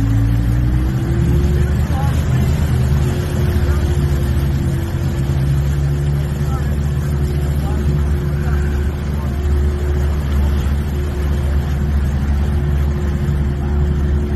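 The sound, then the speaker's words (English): A boat motor drones loudly with a deep, steady rumble as the boat slows down among mangroves. Its pitch shifts at the start, then holds fairly even for the rest of the stretch, with no clear stop. “Boat's slowing down.”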